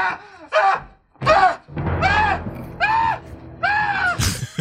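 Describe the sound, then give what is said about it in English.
In a horror film, an old man in an elevator screams in horror after a head is chopped off, letting out a series of loud, strained yells that rise and fall in pitch, about six bursts in quick succession over a low rumbling background. “Here's a great old man scream.”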